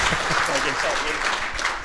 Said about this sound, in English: So I'd like to get the audience to give you guys a round of warm applause for that.